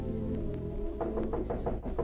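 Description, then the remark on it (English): About five quick, evenly spaced knocks on a hotel room door arrive in the second half, sharp and moderately loud over a steady low background drone, with no talking. “A few hours later, M knocked on her door.”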